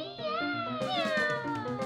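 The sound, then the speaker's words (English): Several cats meow at once in an alley, their drawn-out, wavering cries overlapping into a loud chorus that carries on without a break for a couple of seconds. “Some of the coolest cats around like to hang out down in the alley.”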